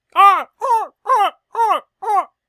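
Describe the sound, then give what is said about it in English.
A person imitates a sea lion's bark with five loud, harsh, evenly spaced honks, each about a third of a second long, with no other talk. “I was actually going for sea lion.”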